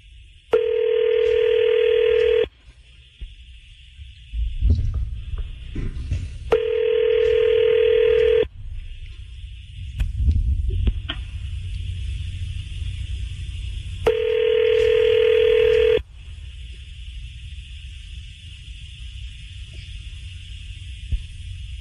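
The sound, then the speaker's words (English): A cold call to a woman ringing out on the telephone: three loud, steady electronic ringback tones about two seconds each, separated by pauses, over a faint low background hum, with no one speaking. “We're going to cold call her.”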